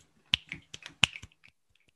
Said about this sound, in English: Whoop, whoop. It was aggressively finger snapping.